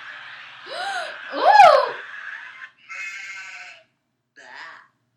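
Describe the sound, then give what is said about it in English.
A woman's exaggerated disgusted vocal sound effect: a loud, close, bleating groan with swooping pitch, followed by two shorter strained vocal bursts separated by brief pauses. “It's called Disgusted Woman.”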